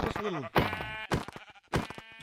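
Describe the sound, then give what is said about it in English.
A lamb bleats in short, quavering cries, several times in quick succession, clear, with brief noisy bursts between the calls. “I made Skywars funny moments too, and now they're trying to give me a lamb?”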